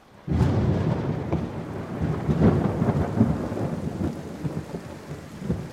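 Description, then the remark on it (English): Steady rain pours down as deep thunder rolls and rumbles continuously, starting with a sudden loud crack and staying heavy throughout, with no voices. “The rain was steady, but my sleeping bag was dry and my body was warm.”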